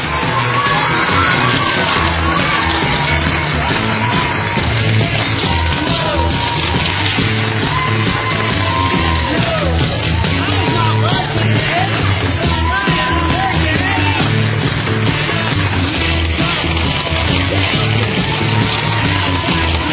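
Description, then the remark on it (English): An audience cheers and shouts continuously during a game, a dense roar of overlapping yells and whoops that stays loud and steady throughout. “If you don't have them, sorry, you can cheer anyway. Give us some conciliatory cheer.”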